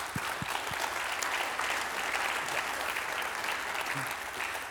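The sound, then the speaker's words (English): An audience at a faith-at-work gathering claps steadily for a group of guests, a dense wash of applause that holds at an even level throughout with no voices rising above it. “Let's give a round of applause for these folks.”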